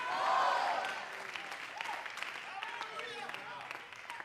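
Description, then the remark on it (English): A crowd breaks into sustained applause mixed with scattered shouts of joy and cheering voices, loudest at the start and then settling into steady clapping with overlapping calls. “Oh, I wish somebody would clap your hands and shout joy.”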